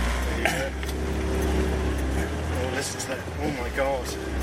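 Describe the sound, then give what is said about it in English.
A sports car engine rumbles low and steady, idling as it begins to pull out of a slightly awkward space, with muffled voices murmuring over the deep throb. “Now, hopefully it's going to be a good one as I try and pull out of this slightly awkward space.”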